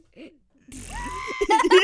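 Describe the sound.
A voice imitates a tape rewinding with a fast, fluttering, whirring hum that rises and wavers for about a second, then breaks into giggly vocal sounds.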